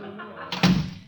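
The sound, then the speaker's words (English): A door swings shut with a single solid thunk, followed by a brief rattle as the latch is fastened, over a faint room hum. “Shut the door. Well, wait a minute. Let me fix the latch.”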